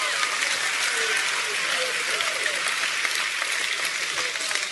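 An audience bursts into sustained applause and cheering, a dense, steady wash of clapping with scattered whoops and shouts rising above it, loud and continuous throughout.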